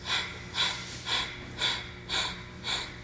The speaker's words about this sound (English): The breathing pattern is to inhale and then exhale double the time. But we're going to use this rather than a long deep breath, more of a pattern of breathing. So we'll inhale for 3 sniffs and exhale in 6.